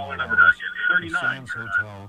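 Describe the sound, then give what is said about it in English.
A tinny, muffled radio voice plays in a phone caller's background, its speech echoing back faintly through the phone line with a thin, band-limited sound and no clear words. “Hearing an echo here.”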